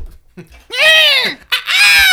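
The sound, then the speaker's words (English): A person imitates a bald eagle's screech with two loud, shrill cries, each rising and then falling in pitch, the second following right after a brief break. “We're supposed to be thinking the bald eagle noise”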